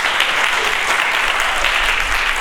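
Steady, loud applause from a church audience at Emmaus fills the whole stretch, a dense wash of many hands clapping with no pauses or voices breaking through, as a speaker is invited to come forward.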